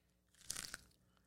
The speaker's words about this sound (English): What do you think? Chewing? Tasting? What do you think?